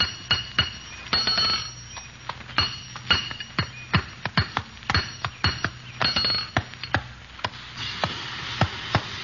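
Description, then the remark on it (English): Hammering at a blacksmith shop: sharp metal-on-metal blows ring out in an irregular rhythm, some in quick pairs, each leaving a bright, lingering clang over a low steady hum, with no voices. “We had to head for the nearest blacksmith shop, so we turned north.”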